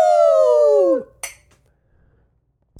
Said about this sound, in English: Well, as we always say on American Brews and Tunes, when we're going to clink our glasses, shibbidi-bee-poo-doo!